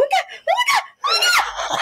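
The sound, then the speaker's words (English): A voice imitates a scream in three shrill, high-pitched bursts, fairly loud, the last one longer and strained, with a laughing edge to it. “That you were screaming.”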